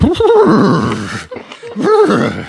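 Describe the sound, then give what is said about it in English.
A person imitates a horse with their voice, giving two loud, wavering whinny-like bursts separated by a short pause, the pitch quavering up and down with a rough, breathy edge. “Is that that horse from earlier?”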